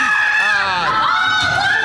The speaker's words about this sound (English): No, listen to everybody scream.